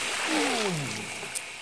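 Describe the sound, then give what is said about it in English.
A brief rushing splash of a bucket of hot water thrown over a person, steady and fairly loud for over a second, with a voice sliding downward in pitch over it. “I've got my bucket of hot water. Get ready. I'm gonna throw it over.”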